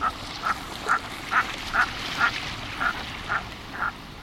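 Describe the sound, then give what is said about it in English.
A merganser duck gives about nine short, croaking calls at a steady pace, roughly two per second. The calls are distinct over a soft background hiss. “Read the latest reports of the Intergovernmental Panel on Climate Change to see why those mergansers may not be coming south in the future.”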